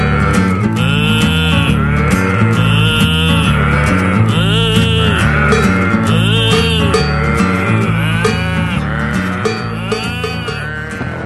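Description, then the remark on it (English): Cows moo repeatedly, their long drawn-out calls overlapping one after another, loud, over a steady low droning background that continues throughout. “I eat grass and I boo all day. I'm a cow.”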